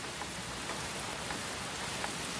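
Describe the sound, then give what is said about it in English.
Soft, steady rain subsiding to a light drizzle patters down evenly, a drizzle-like hiss with scattered drops and no voices, holding at a low level. “And as you're thinking about this, you're hearing the rain starting to subside. It's getting less and less. It's almost down to a drizzle.”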